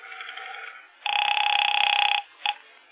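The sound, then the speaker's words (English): A telephone bell rings in a loud, buzzing burst of about a second, followed by a short second ring, clear with no one talking over it. “Well, there's the phone.”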